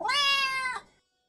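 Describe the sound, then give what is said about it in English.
A single drawn-out meow from an orange tabby cat on a couch in an apartment, loud, holding a steady pitch for most of a second before cutting off into silence. “She puts her stuff away when she turns and sees the orange cat from the coffee shop on her couch.”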